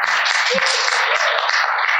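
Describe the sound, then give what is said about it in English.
A crowd of over 130 Domino's managers at a managers rally at the ballpark where the Cardinals play claps steadily throughout, a dense, even wash of many hands applauding at once with no pauses, fairly loud and sustained for the whole stretch. “I can tell by the clap.”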